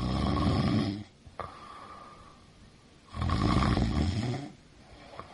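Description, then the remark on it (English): A voice imitates a man's loud snoring: two long, rough, rattling inhales separated by a quiet pause, forceful, with no other talk. “he would snore”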